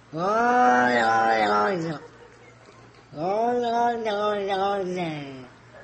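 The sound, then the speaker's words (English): The Olong Johnson cat from a widely viewed online video yowls loudly in two long, warbling cries separated by a short pause, the wavering pitch making them sound eerily word-like, like 'Olong Johnson'. “It's not the Olong Johnson's cat.”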